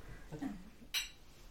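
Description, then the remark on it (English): A single bright clink of glasses touching in a toast, a sharp ringing tap that fades quickly, preceded by a brief murmur of voices. “Cheers to that. Cheers to that.”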